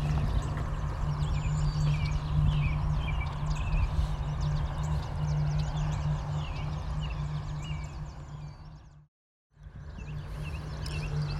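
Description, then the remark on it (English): Yellow warbler song amid a busy chorus of other birds, bright repeated chirps over a steady low rumble and shuffling walking noise, with a brief dropout near the end. “Yellow warblers.”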